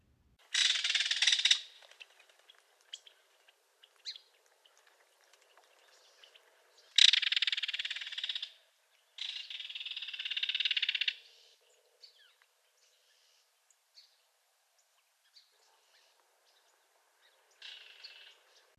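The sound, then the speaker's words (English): A belted kingfisher gives loud, dry rattling calls in several bursts, with a few softer clicks and chips between them and a short final rattle near the end. “One more time, here is the belted kingfisher.”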